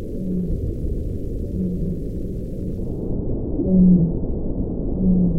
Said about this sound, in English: We recorded several different baleen whale calls.